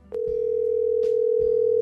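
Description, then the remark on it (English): A steady, unbroken telephone dial tone hums loudly while a phone call is being placed, starting after a faint click, with a few soft handset clicks underneath and no one speaking. “we'll call David right now”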